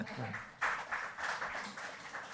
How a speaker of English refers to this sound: Tepid applause. But that's fine.